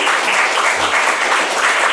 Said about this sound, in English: That's when you clap. Yeah.